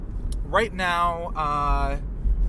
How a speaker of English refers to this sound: So right now we're driving in a car.